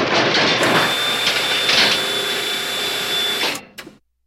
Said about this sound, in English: And at the end of this medical procedure, we hear the loud banging, clanging of the machines and … screams, and then we go to quiet again.